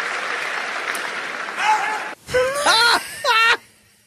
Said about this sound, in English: Somebody was like, America. I'll play it again for you. They're cheering.